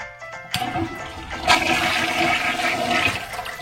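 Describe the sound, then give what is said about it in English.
A plugged toilet is flushed, starting with a sharp click and then a loud, steady rush of swirling water that keeps going to the end, with no voices. “So it turns out all you had to do was flush it.”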